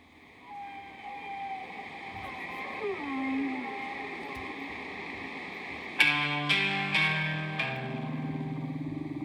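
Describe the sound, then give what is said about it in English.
Long, gliding tonal moans bend up and down like whale song over a low hiss, then bright synth chords strike in repeated stabs, loud, in a piece of played music. “I have to find the whales.”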